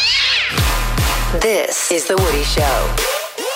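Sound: cat meowing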